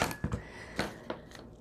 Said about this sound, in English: Okay, you can use the big crocodile, but this is just little work, so I'm going to use my little crocodile, this guy, to punch the hole and set the eyelet.